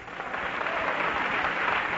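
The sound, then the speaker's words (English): Steady applause from an audience after a closing prayer ending in amen, a dense, continuous patter of many hands clapping at an even level throughout, with no voices standing out. “You may go down clapping.”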